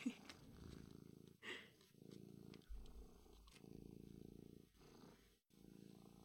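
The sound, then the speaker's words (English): A male cat purrs steadily, its low rumbling coming in rhythmic pulses with brief pauses between breaths, plus a few soft rustling bumps as it rubs its head against the microphone. “He can purr. I can hear it.”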